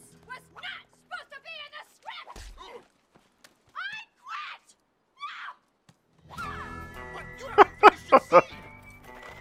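A horse whinnies loudly near the end, a shaky run of pulsed, strained calls, after a series of short chirpy vocal sounds with brief gaps between them.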